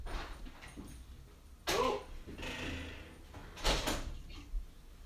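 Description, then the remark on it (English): A female dog makes restless noises by a door as if needing to go outside to relieve herself, a few short whines and scuffling bursts spaced over several seconds, moderately loud, with no one talking. “I think one of the dogs is by the door making noises like she's going to shit, so.”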